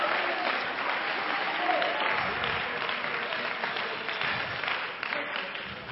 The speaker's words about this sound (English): Somebody clap your hands unto the Lord and shout unto God with the voice of triumph.